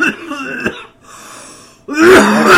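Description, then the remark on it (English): Rough coughing and throat-clearing: a raspy burst, a short wheezy pause, then a louder, harsher hack to finish. The coughs sound somewhat forced, with no talking. “Ask me about coughing.”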